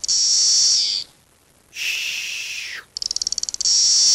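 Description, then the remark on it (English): Periodical cicada (Magicicada cassini) song: loud, high, hissing white-noise buzzes in bursts, one trailing off with a falling pitch, plus a stretch of rapid ticking pulses before the buzz resumes. “In any case, here are the 3 species. This is number 1. Magicicada cassini makes the white noise sound.”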